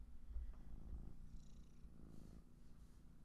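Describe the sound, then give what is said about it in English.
A female cat purrs steadily, a low, soft rumble that pulses continuously with no voices over it. “Can you hear her purring?”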